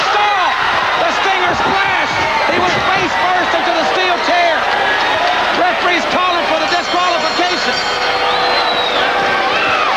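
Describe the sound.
A heavy slam of a steel chair hitting a wrestler's body during a professional wrestling match cuts through a loud, roaring arena crowd, with an excited voice talking over the constant cheering and shouting.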